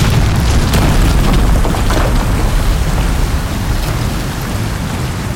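A heavy, continuous roar of seawater flooding through mine tunnels after an explosion, pouring down as though from a great height, with a deep, booming rumble underneath, loud and steady for the whole stretch with no voices.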